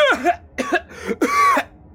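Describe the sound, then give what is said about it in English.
A father coughs four times in quick succession, fairly loud, the last cough longer and raspier, with no talking around it. “When they were trying to get me to eat shit, I heard my father cough.”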